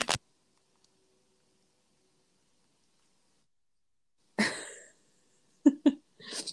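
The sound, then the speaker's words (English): A dog's short, rough burp after near silence, followed by a couple of sharp knocks as the dog hits an iPad and a brief rustle, all fairly loud. “Sorry, my dog just, like, burped and then hit the iPad.”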